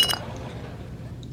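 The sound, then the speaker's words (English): A single bright, sharp clink of glasses touching in a toast, one holding a ginger drink, with a short ringing tone, followed by a quiet low murmur and faint liquid movement. “All right, cheers to you, man. Cheers. Cheers.”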